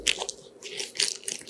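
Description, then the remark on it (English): A short, wet, sputtering mouth noise made with the lips, a human imitation of a fart, with crackly squishy bursts and no talking. “That was my mouth farts.”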